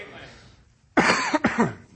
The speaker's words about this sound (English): Forgive my cough, please.